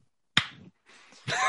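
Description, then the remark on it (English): One sharp hand clap snaps out of silence and decays quickly, followed by a low murmur and the start of a voice speaking. “I'm the only one that claps right. on it.”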